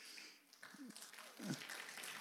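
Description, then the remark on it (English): A church crowd claps at the end of a sermon in a steady, dense wash of noise for a couple of seconds, with a few voices calling out over the applause. “I hope you're clapping because it was good and not because you're just happy that I'm done.”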